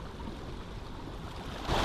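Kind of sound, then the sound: nature, river water flowing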